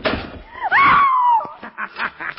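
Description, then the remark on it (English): A heavy door creaks with a drawn-out, wavering groan, then slams shut and is locked with a single loud thud, followed by a few softer muffled knocks. “The door is locked and closed upon you, Shadow.”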